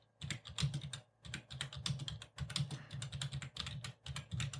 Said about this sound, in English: My wonderful typing. Isn't it great?